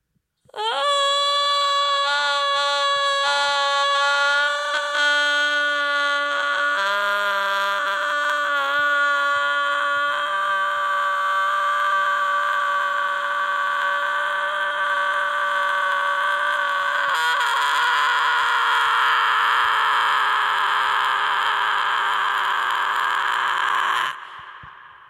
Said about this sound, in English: Scream for a long time.